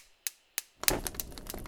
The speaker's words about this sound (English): It's a fireplace. It is, that is a fireplace that you're hearing. It's a fireside chat that we're having with between us and you, the listener.